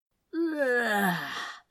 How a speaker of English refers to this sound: Crowley stood up and stretched, faking a yawn.